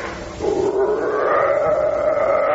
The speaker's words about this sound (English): What's that? Sound like a wolf. There ain't no wolves out here.